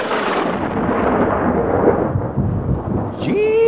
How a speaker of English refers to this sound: Gee-meny, ain't that storm a buster, though. Wild night, all right.